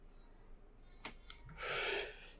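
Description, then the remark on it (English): A couple of quick, sharp intakes of breath build into a single breathy sneeze, moderately loud, with no talking. “Sorry. Bless you.”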